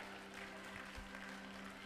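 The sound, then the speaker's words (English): A crowd claps together in a steady, dense wash of applause, with a faint electrical hum running underneath and no voices. “Clap your hands in the house.”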